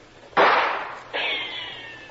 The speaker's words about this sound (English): Boy, they're not bad shots. Almost feel the breeze from that one.